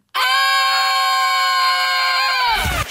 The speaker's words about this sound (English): On the count of three, we want everyone, no matter where you are. Just to let out a scream. To just scream. And we'll hear you. Yeah. And you'll definitely hear us. 3, 2, 1.